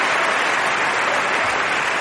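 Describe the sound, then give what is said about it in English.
Steady, dense applause from an audience fills the whole stretch, a loud wash of many hands clapping at once with no voices standing out. “Not a great one for the applause.”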